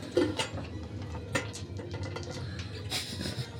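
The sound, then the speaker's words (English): Two dice, rolled for double-critical damage, clatter and tumble across a hard tabletop in a few scattered bursts of sharp clicks, with a final cluster of knocks as they settle flat, over a low background hum. “Oh, your two dice. That still landed flat.”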